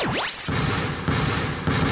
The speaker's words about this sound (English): A dribble, lets it fly. He drills it!